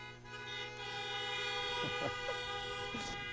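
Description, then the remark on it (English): A chorus of car horns blares together in one long, sustained wall of overlapping honks, loud and steady from start to finish. People in air-conditioned cars are honking to cheer on people standing outside in the heat. A few brief shorter toots and crowd noises pop through. “These guys are out here suffering, so give them a big honk.”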